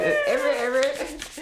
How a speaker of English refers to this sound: Featuring the scratchy paper.